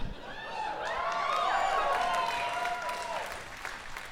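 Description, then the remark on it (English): A few people give a light, brief pity clap after an impression, a thin, scattered patter while voices murmur and laugh over it, steady for a few seconds before tapering off. “I appreciate the pity clap.”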